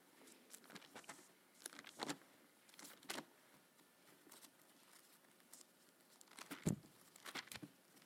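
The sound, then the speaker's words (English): Soft, irregular pattering of rain, with scattered louder drops tapping over a faint hiss; no one speaks. “With the rain is coming mugginess.”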